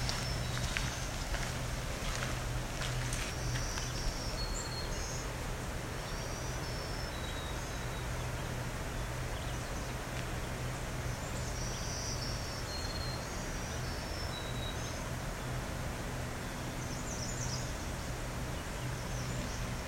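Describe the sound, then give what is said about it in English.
A black-throated blue warbler sings short, high, buzzy phrases several times, faint over a steady hiss of insects and rushing background noise. “Now, the other possibility, this is a blue warbler, a blackbird blue. They do have similar voices.”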